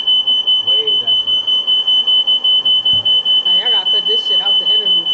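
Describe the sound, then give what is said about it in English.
A smoke alarm, set off by the people present, blares nonstop, a piercing high-pitched beep pulsing in rapid rhythm, while several people talk loudly over it. “No, we just set the alarm off, bro. That shit just went off like that.”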